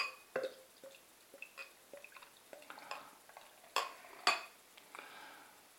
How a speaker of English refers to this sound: No smoke on the opening. It's not bubbling up out of the bottle, which is good. I'll just decant it into the glass and see what I think.